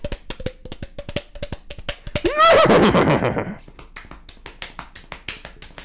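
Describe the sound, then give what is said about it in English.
A person imitates a horse: rapid tongue clicks mimic trotting hooves, then a loud, warbling vocal whinny lasting about a second before the clicking resumes. “Like this horse sound.”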